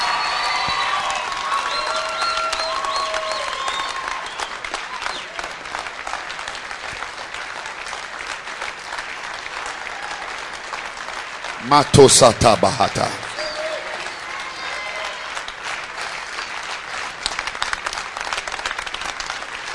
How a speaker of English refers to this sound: They are clapping like this for uneducated pastors. They are clapping like this for evangelists who have not been to school.